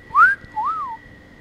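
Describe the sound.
A person whistles a short tune of two clear, gliding notes, the first rising and the second arching up and down, imitating the whistle from a song, moderately loud with no talking.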